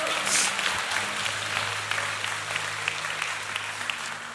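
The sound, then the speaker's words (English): A church audience claps steadily for several seconds after a sermon, a dense wash of many hands with a low sustained hum underneath and faint voices mixed in. “You can clap too if you want to.”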